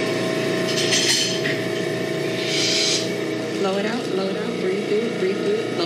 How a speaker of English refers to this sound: You're going to hear this machine turn on now. Okay, it makes a loud noise.